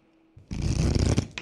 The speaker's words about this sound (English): I'm rolling. Oh, roll that dice. Go.